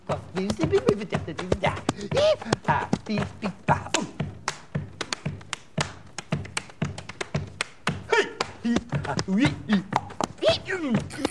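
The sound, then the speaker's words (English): A recording played on a hi-fi system: rapid, irregular slaps and thuds of a man's hands and feet slapping and stomping on the ground, mixed with his high, strained screeches and yelps rising and falling throughout. “It's literally a man slapping and stomping on the ground while making all manner of screeching and yelping noises.”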